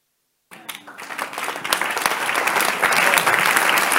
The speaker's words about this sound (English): You clap when I finish with you.